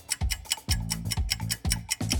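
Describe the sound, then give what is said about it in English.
A game timer ticks steadily, about four sharp clicks per second, each with a dull low knock beneath it, carrying on evenly with no voices over it. “I think the timer, we need instant replay on that.”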